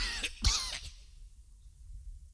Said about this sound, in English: That was a real cough from the allergy, but I'm coming through it.